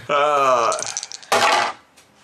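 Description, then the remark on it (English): A drawn-out vocal exclamation, then a short, bright clatter of dice tumbling across a hard table and landing on a 20, ending quickly in quiet. “I see a 20. The dice are liking this today.”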